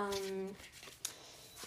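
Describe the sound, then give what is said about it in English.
Soft papery flutters of a Goddess Power Oracle card deck being shuffled for a reading, coming in a few brief bursts, with a person's voice talking over the start. “So yeah, so you're hearing me already shuffling some cards.”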